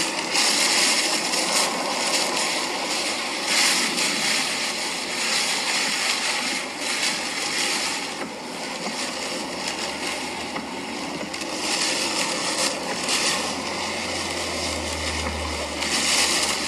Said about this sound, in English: Here is just a little bit what is happening as Hurricane Ian, which is now a tropical storm, has landed in Florida. So if you hear, it is very windy there.